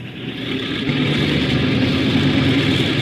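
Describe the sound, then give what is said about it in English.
A propeller engine of a four-engine airliner starts up during the pre-takeoff check and settles into a loud, steady droning hum that swells slightly after the first second, with no voices. “Port engine 2. Starboard engine 1.”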